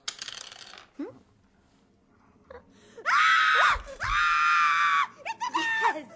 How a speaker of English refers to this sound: Her absolute shrill scream of terrifiedness, I absolutely bought that. Like, it does sound like someone who is absolutely surprised by a rat in their house that they want dead.